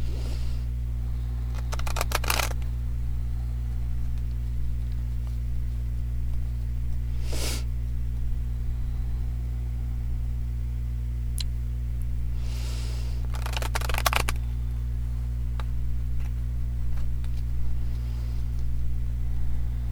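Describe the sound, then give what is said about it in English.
Short bursts of a deck of tarot cards being riffled and shuffled, three or four separate rounds a few seconds apart, over a steady low electrical hum with no talking. “Okay, I'm going to ground and shuffle the deck now in energy for the highest good of all, most benevolent outcome for all.”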